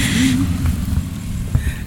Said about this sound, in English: Cue the truck.